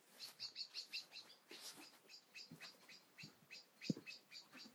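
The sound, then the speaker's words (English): Several small birds call sharply and repeatedly from nearby vegetation, a busy overlapping series of high chips and chatters with a few louder bursts, no voices present. “Lots of birds alarming, which I suspect is my doing.”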